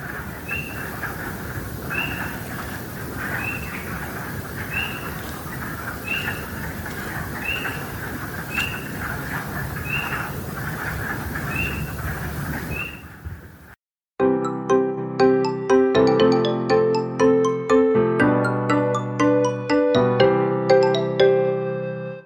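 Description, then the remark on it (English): A dense early-spring frog chorus in a vernal pool, mixed with spring peepers: shrill, high peeps repeat roughly once a second over a thick, rattling din of croaks. After about thirteen seconds it stops abruptly and melodic music begins. “They're the first there, and eventually they start to mix with the spring peepers.”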